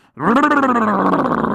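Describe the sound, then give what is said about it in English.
A single loud voice imitating a sea lion's growl, a rough, sustained grunting roar that starts abruptly and holds steady for over a second before trailing slightly. “growled the sea lion.”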